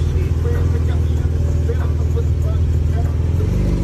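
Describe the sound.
A luxury car's engine rumbles steadily in traffic with a deep, even hum, amid the general wash of street traffic and faint indistinct voices.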